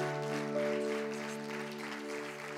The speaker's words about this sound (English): Give them one more hand, to give my wife a hand too for leading them.